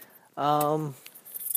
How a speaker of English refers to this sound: Oh, fuck. Dropped my car keys.